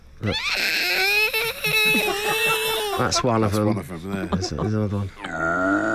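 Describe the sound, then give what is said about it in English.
A voice imitates the ultrasonic squeals plants let out when not given enough water: a long, high, wavering whine, then a run of short, choppy squeaks and grunts, ending in a strained, crying squeal, all loud. “Yeah, they let out little ultrasonic squeals when you don't give them enough water.”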